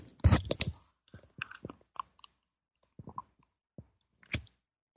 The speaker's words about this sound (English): All right, I'm going to have a sip of my tea.